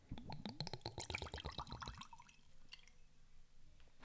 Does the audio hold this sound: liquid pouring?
yes